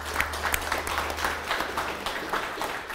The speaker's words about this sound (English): I just want to say again for a minute, congrats to the Lansing Art Gallery and Education Center, who celebrated the grand opening of their new space, which is visible, accessible, right? We have to give them a round of applause.